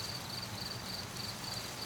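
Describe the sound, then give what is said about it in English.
Crickets chirp at night in a steady series of short, high-pitched trills, faint and evenly spaced, over a constant low rushing hum. No one speaks. “The cold. The crickets. The dark.”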